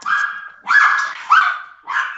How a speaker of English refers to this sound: Sorry, I've got some dogs going. Oh, it's all good. Yeah. Your dog's excited to hear about your project.